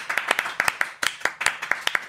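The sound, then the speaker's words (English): A brief round of applause from a few people: quick, sharp, slightly uneven handclaps overlapping in a lively patter for about two seconds, with no talking over them. “So guys, can we please give ourselves a round of applause for finally doing the thing that we said we were going to do for a year?”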